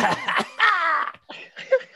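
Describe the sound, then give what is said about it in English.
A person imitates a cough: a couple of rough, breathy bursts, a drawn-out voiced rasp, then a few shorter hacking sounds that verge on laughter. “I've been trying to mimic the cough.”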